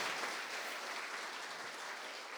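A crowd claps steadily, many hands blending into a dense, continuous patter of applause that holds an even level throughout with no voices over it.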